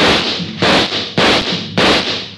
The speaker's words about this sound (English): He took a full volley of shots from 3 police pistols square in the chest.